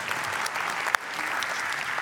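Steady applause from a crowd fills the space, a dense patter of many hands clapping at an even level throughout, with one sharper clap standing out near the middle.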